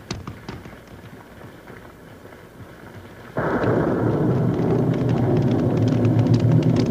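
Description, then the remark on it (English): Steady rain patters with scattered drips, then about halfway through it suddenly swells into a much louder, heavier downpour with a deep rumbling roar that continues to the end. “Here's a young buckaroo standing out in the rain like he had something on his mind.”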